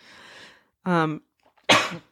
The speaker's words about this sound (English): Horrible. I mean, but we're going to let her cough because I'm not going to be pausing every time she needs to cough. Absolutely gross. Because we won't get done with this.